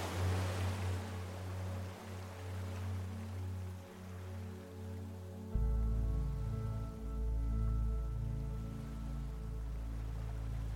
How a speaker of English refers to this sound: The ocean waves seem to wash over you in waves of relaxation as you descend into a deeper state of relaxation.